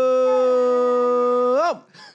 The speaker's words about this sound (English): We got my guy Muddy Waters getting his howling. Jumping in on the action.